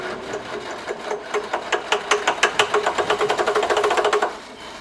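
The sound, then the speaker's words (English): A Jeep engine cranks with a rapid, rhythmic chugging as the key is turned in the ignition; it grows louder and quickens slightly, then cuts off abruptly without ever catching and running. No voices are heard. “I put the key in the ignition and...”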